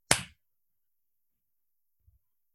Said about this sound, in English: Are we still doing the clap thing? Yeah, that's why I said go for the cue. Okay, fine. 3, 2, 1.